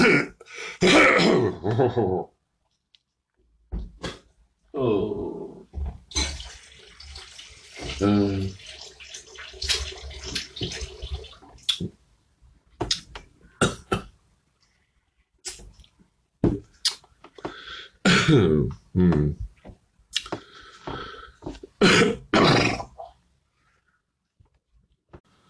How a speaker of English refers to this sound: Okay, I had to stop for a moment. I had a frog in my throat that just wouldn't hop out.